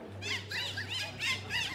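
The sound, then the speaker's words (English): High, warbling squeals chirp in quick repeated bursts, like dolphin calls, over a steady low hum, forming an eerie musical track said to sound like dolphins in the forest, with no voices. “Hey, can you play that track real quick, homie? The one that that sounds like dolphins in the forest or whatever?”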